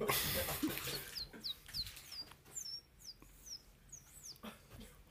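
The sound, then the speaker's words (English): A man whistles with his mouth a rapid series of short, high, chirping bird-like calls, around a dozen quick downward-sweeping peeps in an uneven rhythm, fairly loud, imitating a small bird. “I do bird noises.”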